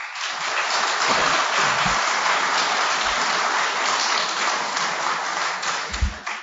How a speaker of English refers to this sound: So if you think that item number one about scientists and journalists is the fiction, if you think that's false, applaud now.